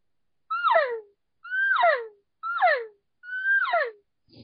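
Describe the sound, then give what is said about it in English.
Four short, whiny cow elk mewing calls blown on a thick 0.4 latex diaphragm call made for bugling, each starting high and sliding down with a raspy, twangy edge, evenly spaced with silence between. “So if you try doing a cow call on this one, it's a lot harder because it's made to bugle.”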